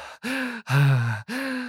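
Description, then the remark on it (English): A voice performs three loud, exaggerated breaths, quick gasping inhales around a longer, voiced, groaning breath, an over-the-top theatrical imitation of an ingenue character's panting in the film History of the World Part One. “Just like very like over the top breathing for she no reason.”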